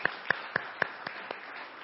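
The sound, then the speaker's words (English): A short burst of audience clapping to congratulate a couple on the birth of their baby boy: about six sharp claps in a quick, steady rhythm, the last few growing fainter, with no voices. “if you can see him, you can pass on our claps to them for you.”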